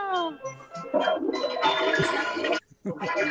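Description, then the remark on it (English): A toilet flushes with a loud rushing swirl of water for about a second and a half, cutting off abruptly, in a Mr. Hanky Christmas station ID for WEGF Highland Park Fairfield; brief gliding vocal sounds come just before and right after it. “Toilet flushing.”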